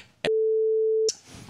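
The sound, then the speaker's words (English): A single loud censor beep bleeping out the name of a restaurant: one steady, mid-pitched tone that lasts just under a second, cutting in and out abruptly with a faint hiss on either side. “Okay, say it and I'll beep it out.”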